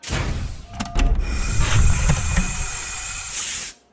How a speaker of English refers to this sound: I almost smiled at the antique sound of an old-style airlock cycling.